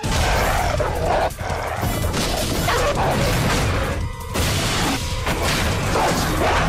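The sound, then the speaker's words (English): A dog barks and snarls loudly amid a dense wall of crashing, thumping commotion that runs without a break throughout, with no one speaking. “What was that? It's my dog.”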